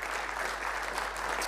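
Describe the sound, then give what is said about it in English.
A steady burst of audience applause, many hands clapping in a dense, continuous patter at an even loudness throughout, with no voices breaking through. “Yeah, I reckon it's worth clapping.”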